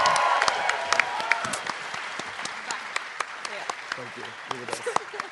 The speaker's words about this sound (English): Can we say a big round of applause? Big thank you to Daniel Sloss, ladies and gentlemen.